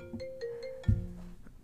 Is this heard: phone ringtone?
yes